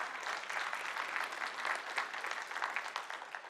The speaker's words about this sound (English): Give them a big round of applause.